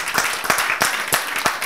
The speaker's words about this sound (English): The reason why is because we're increasing the brotherhood of this church. Yeah. Amen. That's awesome. You can clap for that.